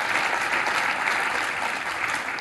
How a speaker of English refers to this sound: Yeah, that's a good clap moment right there.